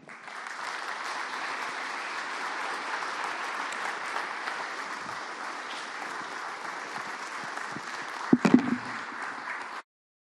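Sustained applause from an audience, a dense steady wash of many hands clapping at even loudness for nearly ten seconds, with a few sharper claps near the end before it stops abruptly.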